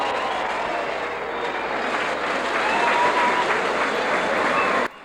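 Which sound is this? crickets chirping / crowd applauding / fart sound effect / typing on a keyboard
crowd applauding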